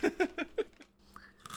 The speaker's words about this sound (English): You take a break to eat the loudest snack that we have?